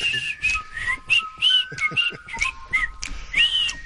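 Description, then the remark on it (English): Fairly loud whistling in a quick run of short, warbling notes that slide up and down in pitch, with a fainter steady tone held underneath. “A little whistling scrotum for you.”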